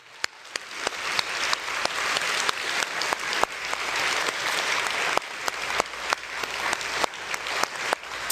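A crowd claps steadily in a sustained round of applause honoring the fathers standing up, a dense wash of many hands with sharper individual claps popping out, holding at an even loudness throughout without any voices.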